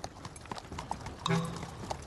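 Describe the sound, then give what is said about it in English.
Horse hooves clip-clop at a steady, even pace as the horse pulls a cart carrying a rider dressed as a scarecrow, with faint rolling and creaking of the cart. A brief whinny-like tone rises near the middle. “said a scarecrow riding a horse-drawn cart.”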